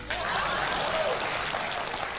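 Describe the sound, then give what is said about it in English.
A short burst of steady, dense applause from what sounds like a crowd, loud and continuous for a couple of seconds with no voices over it. “Please clap.”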